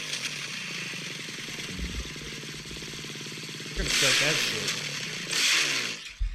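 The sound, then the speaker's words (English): A dirt bike engine runs with a buzzing, uneven idle, then revs hard twice in loud, raspy bursts before settling back down. “Did you ever see my dirt bike?”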